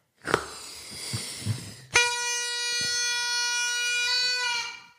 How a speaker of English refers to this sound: Strap a balloon to a party blower and let it fly. It didn't really fly.